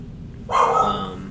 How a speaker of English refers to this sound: There's the dog. Scared me. I'm like spooked.